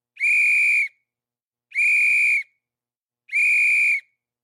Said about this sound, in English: But just then, from behind the crowd, came a loud whistle blast.